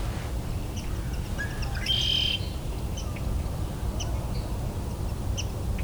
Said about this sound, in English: Also hearing what probably is swamp sparrow doing calls.